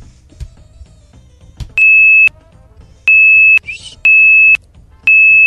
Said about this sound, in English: Hi, are you going to try 2,600 hertz? Yeah, I think I can do it. Can I hear the tone again?